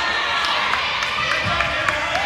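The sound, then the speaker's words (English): A basketball crowd roars and cheers in a steady, dense wash of noise, with sharp thumps of a bouncing ball and brief squeaks popping through at irregular moments. “You'll hear the crowd going wild, so I should get back to the game.”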